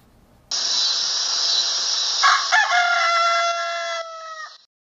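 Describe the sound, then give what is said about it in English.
A rooster crows once, loud, in a long, strained cock-a-doodle-doo lasting about four seconds, with a raspy, harmonic tone that wavers before cutting off. No one speaks. “Known for its distinctive crow, roosters are one of the most abused and least understood animals in the world.”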